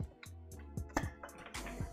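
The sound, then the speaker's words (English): Someone takes a drink of water, with a quick series of soft gulps and swallows in a steady rhythm, about one every quarter second, and faint wet sounds between them. “Let me get this, this water real quick.”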